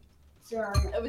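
A glass drops and clatters with a coaster nearby: a ringing clink, then a sharp, heavy knock followed by brief rattling and resonant ringing, all over about a second.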